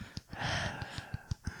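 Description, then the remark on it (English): A voice imitates the heavy, raspy breathing of a prank breathing phone call, a steady rush of air broken by short rhythmic huffs, with no words spoken. “And remember, like, back in the early 2000s and the 90s, you would also get those breathing calls.”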